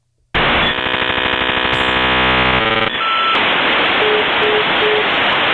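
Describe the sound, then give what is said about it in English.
A loud, harsh electronic buzz from a phone line gives way to steady hissing static, with a few faint, evenly spaced short beeps near the end as a scam caller hangs up the call. No one speaks. “Did you hear that beeping? Yeah. That was him hanging up.”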